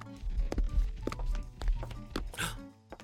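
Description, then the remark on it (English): A cat approaching: irregular soft thumps and taps of padding footsteps coming along, over a steady low hum with faint tonal ringing. No one speaks. “It sounds like a kitty cat coming this way.”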